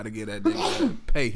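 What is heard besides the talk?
sneeze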